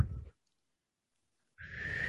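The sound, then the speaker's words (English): A person attempts a weak half whistle, imitating a child trying to whistle: a short burst of breathy air, a pause of silence, then another airy blow with a thin, wavering whistle tone only half forming through the hiss. “I'm really bad at whistling. Or. like a half whistle.”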